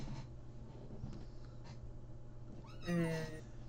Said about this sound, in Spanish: Que no crees que el pequeño amiguito, el lindo gatito, güey.